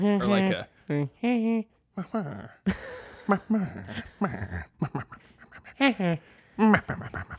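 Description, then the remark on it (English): Someone imitates a happy goose with a string of nasal honking calls, several short bursts with brief pauses, a breathy, scratchy stretch in the middle, then a few more honks. “I don't know a happy goose sound.”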